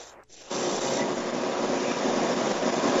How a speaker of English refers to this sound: I think it's his air conditioner.